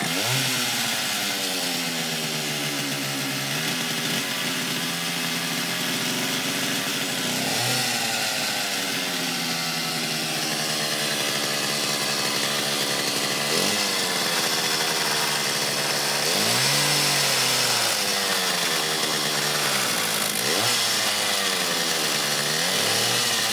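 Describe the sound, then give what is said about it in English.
A chainsaw runs loudly and continuously, its engine pitch rising and falling in repeated revving swells throughout, with no voices over it. “Wait, did we not miss something? Like what? The chainsaw!”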